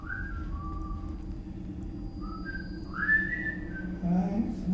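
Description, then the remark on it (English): A person whistles a short series of sliding, rising notes, clear, over a steady low background hum, with no talking; the person is whistling in a bathroom while on the toilet. “It almost felt like he, like, whistled in that room to do a little test, almost, to, like, oh, let's see, is he gonna recognize my whistle while I'm pooping?”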